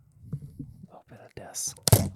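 A small bowl of Cinnamon Toast Crunch cereal being opened: soft rustling and low handling thumps, then a hissy crinkle of plastic and one sharp, loud tearing snap as the lid peels back.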